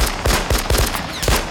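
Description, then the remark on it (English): A rapid burst of rifle gunfire, roughly six or seven sharp, loud shots cracking in a quick, slightly uneven rhythm, with no voices. “slams the fresh magazine home, cocks the rifle, and squeezes the trigger again.”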